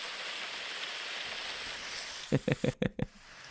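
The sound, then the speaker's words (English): Rain, played from a white noise app, patters steadily on a tent in a dense, even hiss, then a short run of louder, choppy bursts that sound like a voice cuts in near the end. “This is rain on a tent.”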